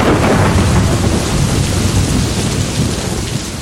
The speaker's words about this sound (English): And when the monsoon arrives, the clouds burst. It's called the burst of the monsoon.